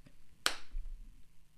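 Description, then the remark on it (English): One sharp hand clap rings out alone, a bright crack with a short decaying tail, followed by quiet low rumble and no talking. “We got a clap.”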